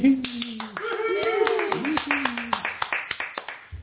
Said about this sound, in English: Rousing applause.